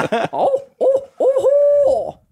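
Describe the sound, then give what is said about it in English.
A person imitates an owl's hoot with their voice: three fairly loud hooting calls with wavering, gliding pitch, the last drawn out longest. No words are spoken. “Try an owl next time.”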